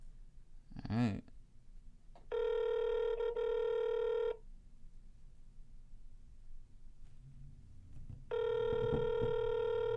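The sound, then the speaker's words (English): An outgoing phone call rings on the line: two long, steady ringback tones about six seconds apart, with a brief chirp near the start and faint background noise between rings. “It seems to be a lot of rings.”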